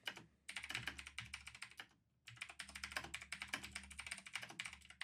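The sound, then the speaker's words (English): Rapid typing on a computer keyboard, picked up loudly by a microphone, a dense stream of sharp clicking keystrokes with a brief pause in the middle before the clatter resumes, loud and with no voices. “I think the typing is really loud on this microphone right now.”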